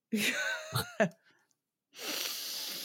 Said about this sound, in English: You did, breathe in a sniff, there, didn't I? It was a sniffy breathe in there. It was a sniffy breathe in, and that's what I've got to say.